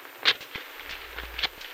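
Paper travel tickets, including a bus ticket and a train ticket from Cape Town, being torn up into little bits, two short, crisp rips spaced about a second apart, bright and papery against a faint low rumble, with no voices.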